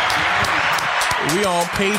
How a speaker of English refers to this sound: Now clap it up now.